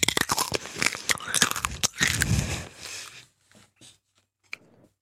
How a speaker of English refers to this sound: Me when I'm eating Taco Bell. When I'm eating crunchy shit.